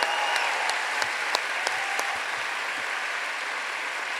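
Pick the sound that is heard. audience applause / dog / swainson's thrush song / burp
audience applause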